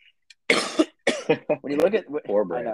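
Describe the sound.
A single harsh cough bursts out after a brief quiet, then a voice resumes talking right away in steady speech.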